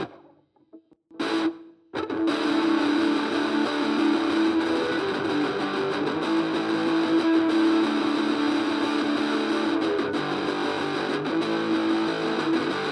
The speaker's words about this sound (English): try putting down a pair of guitar tracks through the replacement $15 Radio Shack PA amp I recently picked up on eBay